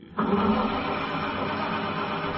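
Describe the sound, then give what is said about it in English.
A cold car engine strains to start, kicking in abruptly and holding a steady, grinding whir for about two seconds with no voices over it. “Uh-oh. Car's cold.”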